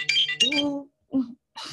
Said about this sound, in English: Is that your Kim Possible ringtone? Do you still have that? It is my Kim Possible ringtone.